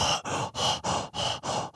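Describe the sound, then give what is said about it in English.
A voice imitates the heavy, rapid panting of people exercising hard: six loud breaths in a steady rhythm, each a harsh, breathy rush of air with brief gaps between. “They're breathing so hard, they're working so hard, they're like the fire-breathing dragons.”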